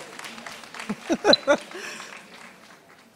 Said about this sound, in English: Let's give my husband a round of applause, y'all. He's helping me today.